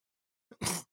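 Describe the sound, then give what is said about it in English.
A single short cough: a brief catch of breath, then one loud, harsh, breathy burst lasting about a quarter second, with no talking around it. “Oh, you're coughing.”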